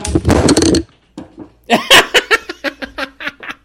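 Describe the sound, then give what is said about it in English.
A microphone gets knocked over with a loud, harsh rumble and clatter lasting under a second, then a brief pause before several short bursts of laughter follow. “No, what happened is I knocked over my mic.”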